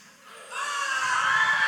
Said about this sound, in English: So first thing I want to have you guys do is give me your best rebel yell, because we're part of the rebellion, right, against the evil, right? So give me your best rebel yell if you've seen all 9 Star Wars movies.